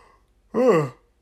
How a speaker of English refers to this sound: Jeez, sorry, I'm yawning all the time